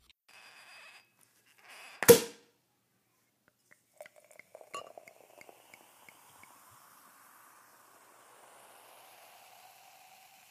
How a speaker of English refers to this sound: So we're gonna, this is where we're gonna edit in that sound of the pop and the sizzle of the popping bottles. Yeah. Popping bottles.